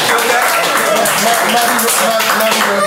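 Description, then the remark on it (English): Steady, dense hand clapping from several people fills the whole stretch, a loud crackling patter with a faint voice running underneath. “Make a clap for that.”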